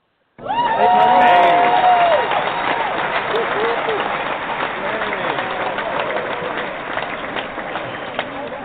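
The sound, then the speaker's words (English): Audience applause on a show welcoming actor James Preston bursts in abruptly and carries on steadily to the end: a dense wash of clapping mixed with crowd voices, plus a brief whistle-like cheer near the start. “What an applause.”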